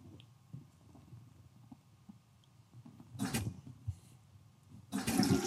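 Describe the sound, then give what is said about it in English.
A toilet flushes with a loud rush of water, played as a verdict on Verizon stock, a brief surge followed by a second stronger gush at the end, over a low, quiet rumbling background. “Flush it up, flip it.”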